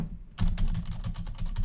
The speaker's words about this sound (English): I better not just start banging on my keyboard before I fuck up this entire recording.